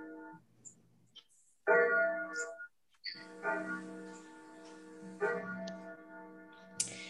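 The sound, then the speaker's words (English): A clock chimes, striking a few sustained, ringing tones one after another, each fading into the next. The chimes are fairly loud, with no one talking. “Wait just a minute for the clock to quit.”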